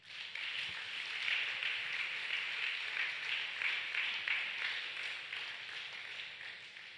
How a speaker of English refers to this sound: Now begin to give the Lord a round of applause.